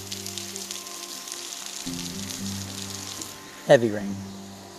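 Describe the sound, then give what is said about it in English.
Heavy rain hisses steadily throughout under a bridge on the Pacific Coast Highway, a dense wash of noise over a low droning hum, with a bicycle behind and a brief sharp clatter rising out of it near the end. “Heavy rain and a bicycle behind me.”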